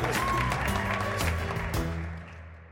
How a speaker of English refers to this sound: There's even a live audience sometimes, with the obligatory applause sign.